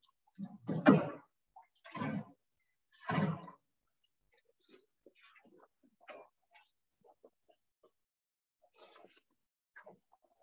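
Water drains from a mesh filter bag holding wet blonde hash, as more water is worked out of it, in three loud, wet, splashy bursts, then thins out to faint scattered drips and trickles over the following seconds.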